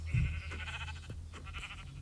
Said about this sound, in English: Hey, where'd the other sheep go? Oh, another sheep just spawned. And there, I see the other sheep.